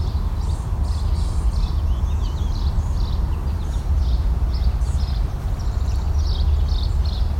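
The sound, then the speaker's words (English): An adult gnatcatcher gives a steady series of short, harsh squawks, repeated every half second or so, over a constant low rumbling background noise. No one speaks. “There's the gnat catcher.”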